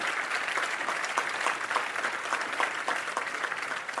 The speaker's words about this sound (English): I'm gonna wait while you clap your hands.